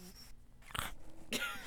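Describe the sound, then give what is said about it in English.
An 18-week-old pug puppy named Lambo, whose smashed-in face makes breathing hard, snorts and grunts with labored, wheezy breathing: two rough, raspy bursts over a quiet background, faint, with no talking. “And if you know anything about pugs, their faces are smashed in, and so he can't breathe very well, and this is what he sounds like.”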